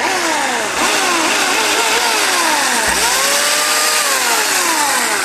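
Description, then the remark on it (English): A chainsaw runs loud, its engine revving up and down repeatedly with a harsh buzzing whine that rises and dips in pitch for several seconds, with no voices. “All right, let's hear that chainsaw one more time.”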